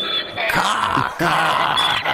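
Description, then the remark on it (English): A person loudly imitates a donkey's bray, two harsh, raspy bursts with sweeping pitch, like a strained hee-haw, with no other talking. “No, that's the donkey sound, man.”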